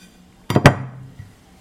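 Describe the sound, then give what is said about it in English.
A plate, onto which deep-fried chips will be emptied, is set down on a hard surface with a quick double clatter, two sharp knocks close together followed by a brief ringing decay. It is fairly loud, with no voices. “We need a plate, which is what the chips will be emptied onto.”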